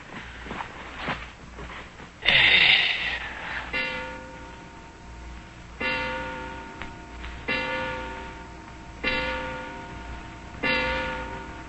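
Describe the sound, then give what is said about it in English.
A freshly wound clock with an alarm chimes ten o'clock: resonant bell-like strikes at a slow, steady pace, each ringing out and fading before the next, clear with no talking. “Six, seven, eight, nine, 10 o'clock.”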